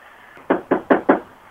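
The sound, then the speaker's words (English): Four quick, solid knocks on a door in an even rhythm while trick-or-treating, fairly loud, with quiet before and after and no one talking. “I'm waiting now. Knock again.”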